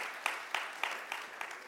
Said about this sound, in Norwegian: Vi gir en applaus.